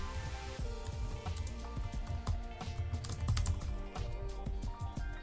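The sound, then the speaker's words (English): Rapid, uneven keystrokes clatter on a computer keyboard as someone types a playlist name, a steady run of clicks and taps over a faint background hum, with no voices. “I think it's just because your keyboard is different than mine.”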